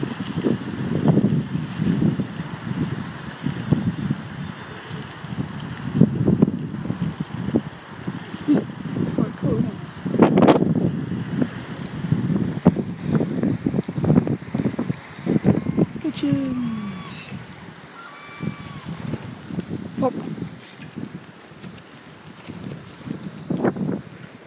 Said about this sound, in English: Look how the wind blows the water. Plop. See how strong the wind is there?